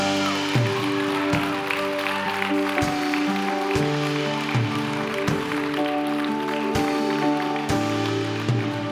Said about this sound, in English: Come on, let's clap.